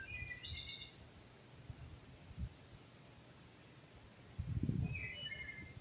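Birds chirp and sing in short bright bursts outdoors, a few calls near the start and end, over a steady low rumble of wind or distant noise with occasional soft thumps.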